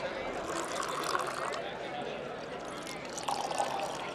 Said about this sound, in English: The organizers pour water from heavy bottles into stemmed glasses before handing samples from cities large and small to each of the judges, who are grading them on a scale of 1 to 10.